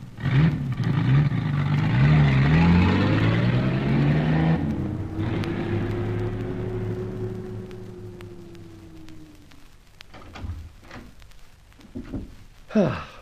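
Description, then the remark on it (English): A car engine revs and pulls away, its steady hum rising then fading as the vehicle drives off, leaving quieter background noise and a few faint clicks. “Better drive the car on.”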